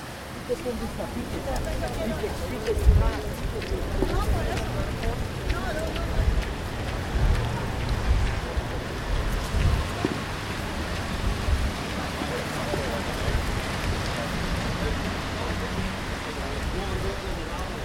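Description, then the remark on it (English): Steady rain pours down on the still-empty Camp Nou stadium in Spain, about an hour and three quarters before a match. A constant, dense hiss plays over a low rumbling background and occasional indistinct murmurs of Benfica fans in the distance, fairly loud and even throughout. “So, Camp Nou, it's all raining.”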